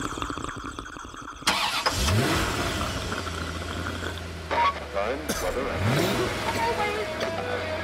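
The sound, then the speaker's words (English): A car engine cranks and catches with a sudden loud burst, then settles into a steady low idle, revving up briefly once more a few seconds later; other sounds mix in. “Then the next thing is the sound of a car starting.”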